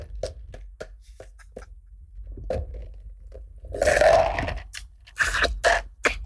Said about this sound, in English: I'm sorry, I can't hear. I'm chewing ice.